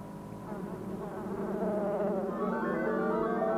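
A dense, continuous drone of many killer bees buzzing, steady and fairly loud, with a slowly swelling hum and no voices.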